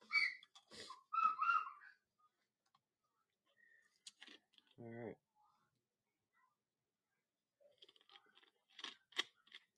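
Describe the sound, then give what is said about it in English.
A female dog barks while playing, in a few short, scattered bursts with quiet gaps between, one bark louder and deeper than the rest, alongside some faint clicking and chewing-like noises. “I don't know what she's in there barking at right now, but you can tell she's barking and having fun with that, so there is that.”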